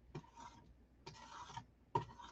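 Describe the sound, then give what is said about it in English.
A razor scraper scrapes dried acrylic paint off a palette in three rough, raspy strokes, each about half a second long with a sharp start, separated by brief pauses. No one speaks. “So what I use to clean my palette is this razor scraper.”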